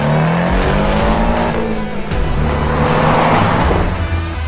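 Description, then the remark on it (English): A car engine revs up and accelerates hard, its loud growl climbing steadily in pitch over a steady rush of road and wind noise, with no one talking. “My car's going to feel slow as balls after this, I'll tell you that.”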